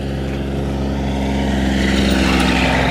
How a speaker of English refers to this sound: Sorry about that. A car just passed me by.